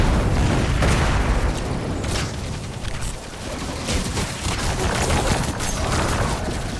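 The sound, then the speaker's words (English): Loud, rumbling video game explosions fill the whole stretch, with repeated booming blasts and crackling bursts layered over a dense, sustained roar, intense with no speech. “Wait for the explosion.”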